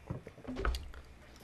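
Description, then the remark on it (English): Someone takes a quick sip of water, with soft wet mouth sounds and a faint gulp, quiet and brief with no talking. “I'm sipping water. Give me a moment.”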